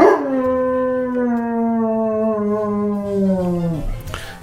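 A dog howls in one long, mournful note that holds steady for several seconds, then slides downward and trails off, with no other sounds around it.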